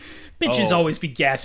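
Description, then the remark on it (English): A voice imitates a woman's dramatic gasp of surprise as she looks down at her phone: a loud, drawn-out voiced intake with a wavering pitch, followed by a shorter second burst. “and we're chatting on the deck, and then she looks down on her phone and then gasps.”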